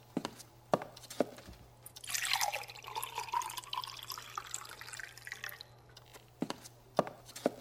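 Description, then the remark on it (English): Water pours steadily into a glass for a few seconds, bracketed by sharp clinks and drips before and after. The pour is moderately loud, with no voices. “Could I have a glass of water, please? I'll get it.”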